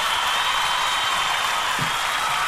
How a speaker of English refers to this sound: And, God, we got to do applause again because we're just so excited you're here. This is such a great deal.